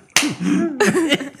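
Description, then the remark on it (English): A few sharp slaps like hands clapping together, spaced unevenly over a second and a half, with a wavering, voice-like tone humming beneath them. “Because it sounded like hands clapping.”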